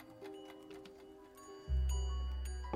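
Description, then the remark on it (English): An Omega Speedmaster Chrono Chime wristwatch's chronograph chime mechanism: light, rapid mechanical ticking, then a sudden loud, low, ringing chime that sustains and slowly fades. No one speaks. “That's the Omega Speedmaster Chrono Chime. Sound of complication.”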